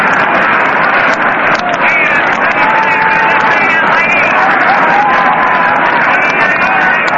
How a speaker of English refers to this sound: Hear that crowd still murmuring over that play of Bartell.